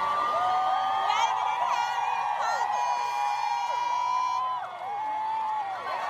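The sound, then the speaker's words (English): A dense crowd cheers and screams continuously at a procession of Meghan and Harry, with high-pitched excited shrieks and whoops rising above the roar, loud, sustained for several seconds with a brief dip near the end. “Please turn down the volume because you'll hear me screaming”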